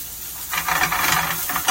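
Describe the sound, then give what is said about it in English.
A steady crackling sizzle flares up in a hot pan as spices are thrown in and stirred through it, with scraping swishes rising and falling over under two seconds, no voices. “Excuse me, just throw the spices in here.”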